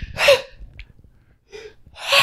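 A person sneezes sharply, then gives a softer breathy burst and a second sneeze, with brief quiet pauses between and no talking.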